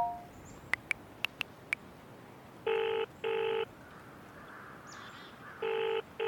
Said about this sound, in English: That's not magic, it's a mobile phone. It can't be a phone. Not been invented yet. Magic.